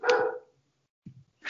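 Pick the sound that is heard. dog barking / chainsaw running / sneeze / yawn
dog barking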